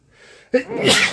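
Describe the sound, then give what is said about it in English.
A single loud sneeze: a brief breathy intake followed by a sharp burst that spreads into a bright, hissing exhale, with no talking. “I'm about to sneeze.”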